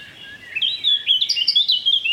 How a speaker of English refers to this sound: Here he goes. Goldfinch. It's a proper orchestra.